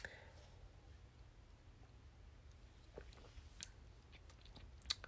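Quiet mouth sounds of someone sipping cranberry juice, with a few soft wet clicks and small slurps toward the end over a low steady hum, with no talking.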